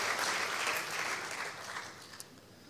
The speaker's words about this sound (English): I think we should give Jesus a clap for all he's done, for his shed blood. Thank you, Jesus. Thank you, Lord.